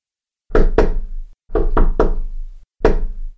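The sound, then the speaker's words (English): Loud knocking on a wooden door in a patterned rhythm: two quick raps, a pause, three raps, then a single final knock. No voices. “Knocking of the door.”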